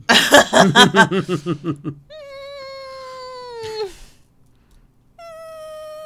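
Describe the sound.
A woman imitates a cat: a quick run of stuttering, pulsing yowls, then a long, steady meow that slides down at the end, followed by a shorter meow, clear.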